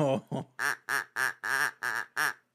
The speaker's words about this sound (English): We have to get to our cars, and there are lots of ducks outside for some reason. Just everywhere.